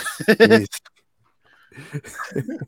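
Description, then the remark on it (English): A voice mimics the heavy panting of a performer who had to stop midway through a show in Idaho, in a quick run of loud, breathy, rhythmic gasps, then falls silent for a moment before someone starts talking. “he start panting like the horse when you got on it.”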